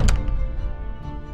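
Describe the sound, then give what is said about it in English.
A single heavy door slams shut with a deep, booming thunk near the start, its low rumble lingering, echoing and fading away. “The king smiled as the visitors were led away, the doors shut, leaving him alone with his son.”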